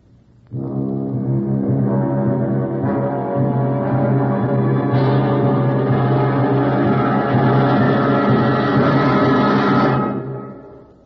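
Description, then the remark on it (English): A doorbell sounds sharply as one loud, continuous electric buzz, holding steady for about nine seconds before cutting off abruptly, with no voices over it. “The doorbell rang out sharply.”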